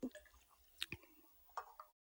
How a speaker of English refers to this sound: Okay, I'll take a little sip. Here we go.